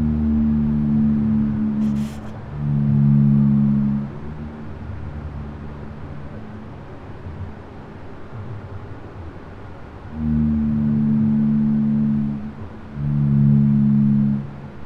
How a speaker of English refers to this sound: That is a boat. It does sound like a boat, but it is an animal. Or maybe a humpback whale.